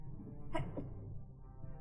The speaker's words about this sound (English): Bless you. Bless you.